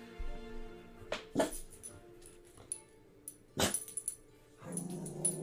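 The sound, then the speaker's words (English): Wolves give a few sharp, scattered barks mixed with whimpers, then a longer whining, growly cry near the end, against a low background rumble. “Wolves are back!”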